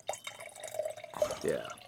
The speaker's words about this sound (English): Sorry, I'm not peeing. I'm just pouring a glass of water.